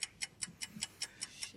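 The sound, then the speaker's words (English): A quiz timer, started during a trivia question, ticks steadily, about eight crisp, high clicks at an even, quick pace of roughly five per second, with no voices over it. “I'll actually start the timer.”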